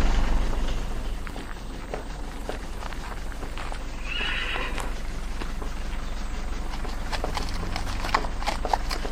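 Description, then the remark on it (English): Horse hooves clip-clop in a steady, unhurried rhythm over a constant outdoor background hiss, with a short whinny rising partway through. No one speaks. “Let me fetch my horse, and I'll follow, Captain.”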